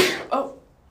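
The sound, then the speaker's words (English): A single sharp sneeze bursts out, a loud, hissy blast that fades quickly, followed right away by a brief voiced exclamation from someone. “Bless you.”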